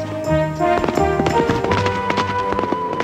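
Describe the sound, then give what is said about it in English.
Galloping hooves of a horse named Thunder pound in a quick, uneven rhythm as it neighs and sets off with its rider, mixed with swelling tonal music that fills the background throughout. “And as Thunder neighs, Conan laughs, and the two set off.”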